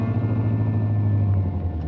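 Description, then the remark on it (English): A car engine rumbles low and steady as the vehicle pulls off the highway into a shed at the end of a deserted lane on an island, Lower Matecumbe in Florida, and rolls slowly to a stop, with no voices over it. “She pulled the car into a shed.”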